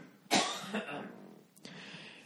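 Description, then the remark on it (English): A person coughs, a loud harsh burst followed by a rougher second cough and then a shorter hack, with no talking around it. “So don't think I fucking have some sort of miner's cough.”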